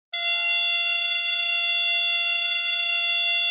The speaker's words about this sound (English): the bases are padded cylinders that stand about 4 feet tall, and these cylinders have speakers inside them. When the player hits the ball, a person called a base operator will activate one of these two bases. Here's what the base sounds like.